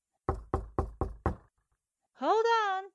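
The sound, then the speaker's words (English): Five firm knocks on a door at night in a quick, even rhythm, followed after a short pause by a brief drawn-out vocal call from a person. “I wonder who's knocking at this time of night.”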